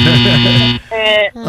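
signal or alarm, game show buzzer

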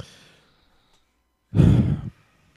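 human body sound, sneeze

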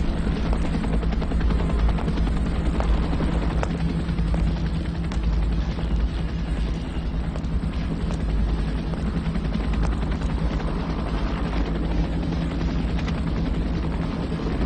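vehicle, helicopter rotor noise

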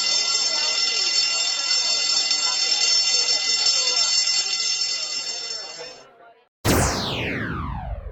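signal or alarm, school bell ringing

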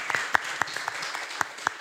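crowd, audience applause

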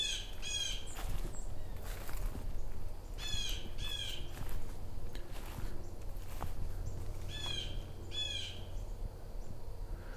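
bird, blue jay calls

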